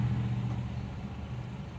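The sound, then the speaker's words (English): A taxi engine rumbles low and steady, easing off slightly as the cab slows to a halt, with a faint high squeal briefly above it. “Suddenly, your hand withdraws and the car comes to a stop.”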